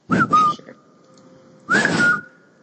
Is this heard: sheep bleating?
no